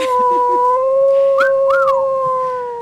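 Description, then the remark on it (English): A loud cartoon wolf howl holds one steady, piercing tone for about three seconds, with quick swooping bends partway through. No one is talking. “Is it the horny wolf from Looney Tunes?”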